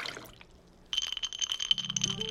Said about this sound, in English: glass, ice, pour.